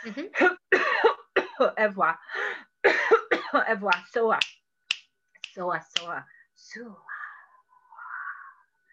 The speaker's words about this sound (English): I have to cough because it's a deep releasing of all this energy.